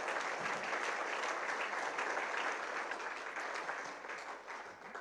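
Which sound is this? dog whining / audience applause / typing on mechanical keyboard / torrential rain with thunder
audience applause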